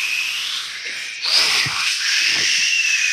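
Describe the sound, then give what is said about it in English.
A person vocally imitates the hiss of a mattress expanding, a steady breathy hiss that swells after a brief dip and carries a faint whistly edge over about three seconds. “And then when it expands, does it make a noise like... Yeah, it goes...”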